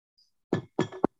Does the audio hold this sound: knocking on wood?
yes